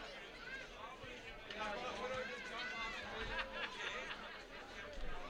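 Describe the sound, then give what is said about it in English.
Steady murmur of many overlapping voices from a football crowd at a local match between Frankston and the Cowboys, during the second half in great weather, with bits of laughter and lively chatter rising and falling throughout, no single speaker standing out. “Crowd's enjoying themselves.”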